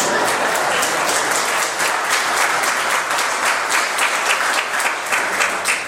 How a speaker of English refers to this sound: Let us welcome the newly baptized. We welcome you to, well, applause first.